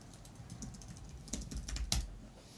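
Rapid, uneven clicking of keys on a computer keyboard as a command beginning with "say" is typed, a quick flurry of light taps with a few sharper strokes near the end, with no voices.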